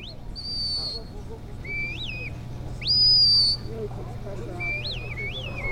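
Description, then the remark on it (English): A series of sharp, sliding whistle calls, some rising and falling in pitch, repeats several times over a low rumbling background, with a brief louder whistle midway: a sheepdog handler's whistled herding commands directing border collies working sheep. “Their handlers use a series of whistled and verbal commands to tell the dogs where to go and what to do.”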